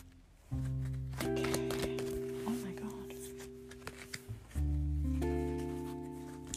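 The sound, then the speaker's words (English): A deck of cards being shuffled for a fortune reading, soft papery riffles and taps scattered through the middle, over a steady sustained musical drone that swells again near the end. “So I'm currently shuffling the cards so you can make a wish, but don't tell anyone what it is because otherwise it doesn't come true.”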